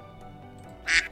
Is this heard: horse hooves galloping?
no